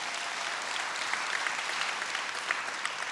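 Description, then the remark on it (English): An audience applauds steadily, a dense, even wash of many hands clapping at once with no break for the whole stretch, a few sharper claps popping out of the crowd noise. “They're going to be able to recognize, oh, come on, you can clap, you can clap, it's okay.”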